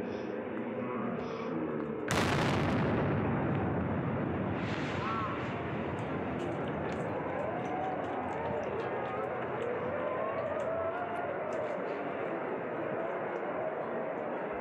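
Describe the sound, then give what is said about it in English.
A video recording of the Boston Marathon bombing plays: a single sudden, powerful bomb blast erupts early on, then a long roar of rumbling noise and commotion follows, with muffled voices and crowd sounds under it. “Well, right before that, the explosion.”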